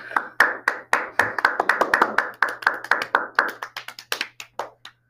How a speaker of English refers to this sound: Can we get a round of applause for all our guests?